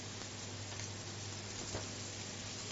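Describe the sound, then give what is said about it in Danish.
Meat sizzles steadily while searing in olive oil in a pan as it is turned, a dense, crackling hiss that holds at an even level throughout, with a faint low hum beneath and no voices. “Og det gælder om at få lukket porerne så hurtigt som muligt, når du lige vender dem, at du har lukket porerne, og den giver det farve, det stegeskår.”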